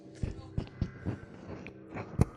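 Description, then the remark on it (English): Steady footsteps thud along a hall at a walking pace, about six or seven heavy steps, growing slightly louder toward the end as they approach, with faint murmuring underneath. “Footsteps coming your way.”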